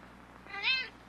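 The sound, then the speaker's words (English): A single short cat meow, rising and falling in pitch over about half a second, fairly clear against a quiet background hum. “Gods! Cat!”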